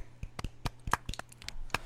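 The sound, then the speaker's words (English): Hands clap in a quick, uneven patter, about a dozen sharp, bright smacks over two seconds, as though a couple of people are applauding at once. The claps are fairly quiet, with no voices. “We're clapping so you can hear us, audio version.”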